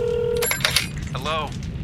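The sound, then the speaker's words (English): A steady electronic phone ring tone of a long-distance call sounds briefly, then cuts off into clattering handset noises as the call is picked up, over a low background hum. “Waiting 2 weeks for someone to pick up the phone is a little much.”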